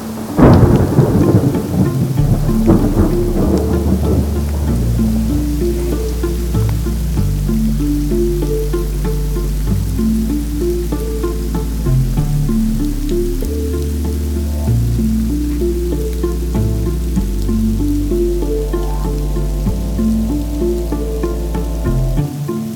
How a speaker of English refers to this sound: Just like my opening weekend here in Nirvana, we encountered rain. Rain and more rain.